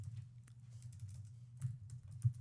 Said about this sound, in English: Just type in the year. I don't understand what you're typing.